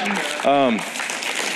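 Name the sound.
audience applause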